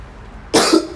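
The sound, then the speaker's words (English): A single harsh cough, a lingering cough after COVID, erupts after a moment of quiet, with a brief raspy tail as it fades out. “Still got some of that lingering COVID cough.”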